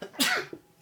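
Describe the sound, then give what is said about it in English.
A single sharp sneeze bursts out, a sudden explosive hiss that fades quickly, followed by a brief softer breath and then quiet. “bless you.”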